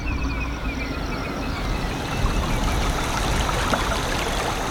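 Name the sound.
flowing river water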